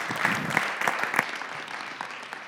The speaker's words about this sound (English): So let's give him like a round of applause.